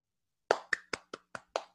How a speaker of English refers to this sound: Nice applause.